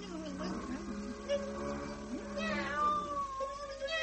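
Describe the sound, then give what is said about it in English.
Madame Mim, turned into a furious cat, yowls and growls in drawn-out, rising and falling wails, fairly loud, with a strained, snarling edge and no talking. “And now in two shakes of that tail, Mim's become a furious cat.”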